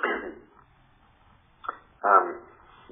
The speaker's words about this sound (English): pardon my cough.